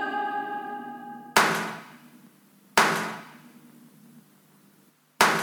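Three sharp, loud gunshots from the London cast recording of the Sunset Boulevard score, each a sudden crack trailing off into a ringing decay, spaced unevenly. A sustained musical note holds just before the first shot.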